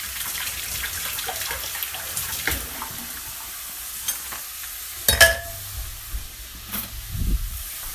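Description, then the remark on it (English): Meat just put into a hot skillet sizzles steadily, a constant crackling hiss, with a sharp clank of a utensil against the pan partway through and some scraping and stirring near the end. “Okay, just kind of putting that meat in the skillet. You can hear it starting to sizzle already, which means my heat might be up a little high, actually.”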